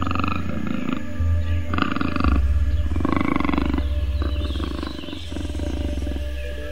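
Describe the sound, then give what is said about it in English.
A panther, a big shiny black cat, roars in a string of deep, rumbling bursts, loud and throaty, each rolling into the next with a low growling undertone and no voices present. “Have you guessed what animal you are yet? You are a panther.”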